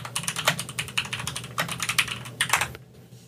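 Rapid clicking of keys on a computer keyboard, a steady burst of typing that runs clear for about three seconds before stopping abruptly.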